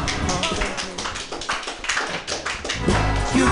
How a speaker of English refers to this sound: Muted applause.